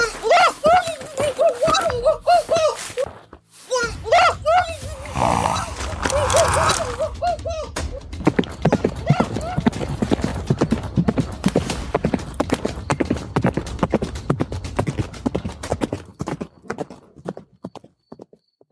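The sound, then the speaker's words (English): A horse whinnies in wavering, drawn-out calls, then its hooves clip-clop in a steady, brisk rhythm, loud, before fading out near the end. “I brought your horse”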